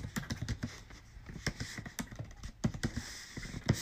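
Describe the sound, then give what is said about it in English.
Rapid, irregular clicking of keys on a computer keyboard, fairly quiet, with a few louder taps scattered through a steady run of typing and no voices. “I know y'all hear me typing.”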